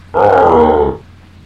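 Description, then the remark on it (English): A single loud, guttural monster roar bursts in and holds for about a second before cutting off, heard alone with a low rumble beneath it, as the angry creature is smashed in the eye with an oar. “You smash into the eye with the oar, and you can see a slight crack come there, but it roars angrily.”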